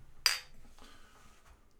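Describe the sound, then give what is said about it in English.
A single sharp metallic pop as the cap of a Sierra Nevada Ruthless beer bottle is pried off with a bottle opener, or church key, followed by a brief hiss and a faint ringing clink, with no talking. “you need to pass me the bottle opener, or what they call a church key in the days”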